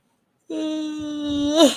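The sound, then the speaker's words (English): A person lets out a long voiced yawn, a steady moaning tone held for about a second that swells, bends upward in pitch, then trails off into a breathy exhale, yawning while cold under an electric blanket. “I cannot stop yawning.”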